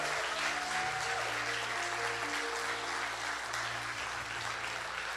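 A large crowd applauds steadily, a dense, sustained wash of clapping that holds at an even loudness for several seconds, with a low musical drone humming underneath.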